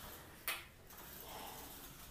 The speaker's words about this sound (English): And now to reach the rest of the tub, I have to slide the doors